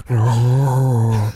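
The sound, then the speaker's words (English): A single voice imitates breathing through a sleep apnea mask: one steady, low droning hum held for just over a second, loud, with no other sounds around it. “It's just like the curtains open and it's like, you know, about 30 men in bed sleeping with sleep apnea masks on, and just like all their faces are mic'd up.”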